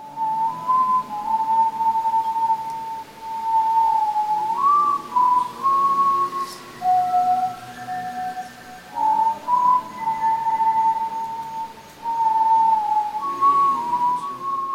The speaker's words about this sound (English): So it's got an intro which has got a kind of whistling leitmotif which kind of recurs throughout the album.